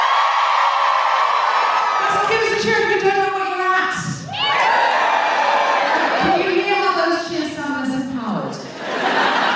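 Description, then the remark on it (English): A live audience cheers loudly and steadily for several seconds, with high whoops and shouts rising above a dense wall of many voices, plus scattered laughter. “Just give us a cheer if you listen to the Guilty Feminist.”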